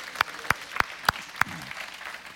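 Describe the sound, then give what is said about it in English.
An audience claps together in a steady rhythm, five sharp, evenly spaced claps about a third of a second apart, then stops, leaving a soft background hush. “Would you give the Lord a clap and thank him?”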